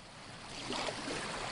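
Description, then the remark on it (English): Steady sloshing and splashing of shallow water, continuous, as people wade out into tidal flats, with a soft wash of surf or wind underneath and no voices. “We're wading out into the tidal flats.”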